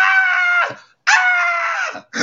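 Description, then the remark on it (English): A man sitting on his back patio watching a game lets out loud, excited yells after seeing a catch, sustained, in two long bursts and a third cut short, with brief breaths between them and no other talking. “I saw the catch, and I just start yelling.”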